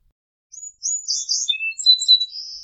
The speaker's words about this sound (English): Song sparrow.